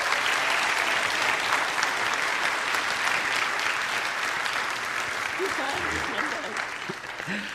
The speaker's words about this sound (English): Would you give her a loud hand?